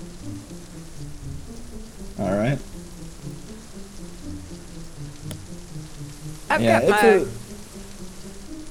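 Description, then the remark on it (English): Steady rain patters on surfaces in a continuous, even hiss, with a voice speaking briefly twice over it. “So within the gate, where I presumably have a little bit more shelter against the rain.”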